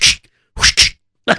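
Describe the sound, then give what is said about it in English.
A voice mimics whip strikes on a horse to make it run, with sharp, hissy bursts: one crack, a quick double crack after a short pause, then a final one. The bursts are fairly loud, and nobody talks. “I have to give my whipping with the horse. You know, if I give the whip, he gets a little sting.”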